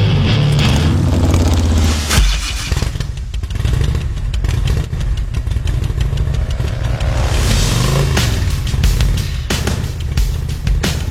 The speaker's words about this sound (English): That's the Harley, by the way. I know. You just started it up. Thank you. Sounds good. Got it right here in the studio.